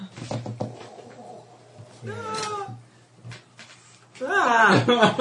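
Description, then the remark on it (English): A duck call blown in two nasal, wavering bursts, a short squawk followed by a louder, longer quacking run, over a steady low hum with a few scattered clicks. “That's a duck caller.”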